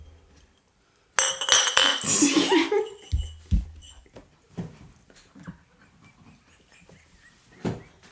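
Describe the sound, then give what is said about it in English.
Glasses of a bourbon and maple syrup cocktail clink together in a toast, a bright, ringing clatter lasting a second or two, followed by a couple of dull knocks as they are set down, then quiet shuffling. “When you drink before the episode, still have to do the iconic cheers.”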